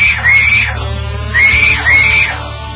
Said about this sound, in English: You just caught your hubby cheating through a goofy high school text. And the screaming starts.